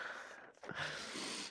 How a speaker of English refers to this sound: Excuse my sniffling, by the way. I'm still getting over a cold.